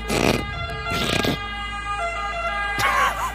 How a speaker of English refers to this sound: This is an Italian siren first.